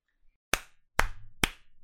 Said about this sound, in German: Okay, das sieht man auf jeden Fall. Ja, genau. Die drei Claps habe ich jetzt gesehen.